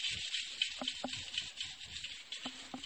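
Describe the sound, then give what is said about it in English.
A toilet brush swishes around a toilet bowl in brisk, scrubbing strokes, a steady brushy hiss punctuated by a few soft knocks against the porcelain. “Just give a little swish in the toilet.”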